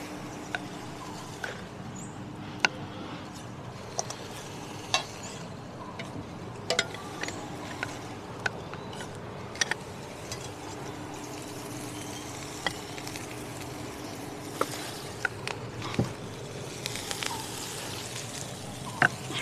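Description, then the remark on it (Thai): Vegetables are put into a hot pan and stir-fried, sizzling and crackling steadily, with scattered sharp ticks and scrapes as they're stirred. No one is talking. “เชิญเอาผักลงไปนะ”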